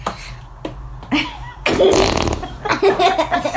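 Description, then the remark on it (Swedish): A run of loud fart sound effects, several blasts in quick succession with buzzy, sputtering tones, the last stretch longest and most sustained. “Jag har pruttljuden.”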